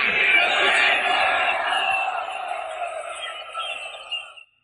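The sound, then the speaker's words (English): A crowd shouting together for Barabbas to be released, in a dramatization of Jesus before Pilate, a loud, dense roar of many voices that swells at first, then gradually thins and tapers off, with a final brief burst before cutting out. “What was it like for you just now to hear that crowd?”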